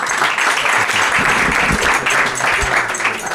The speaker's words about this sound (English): And so now, please, can we have a big round of applause and welcome the two,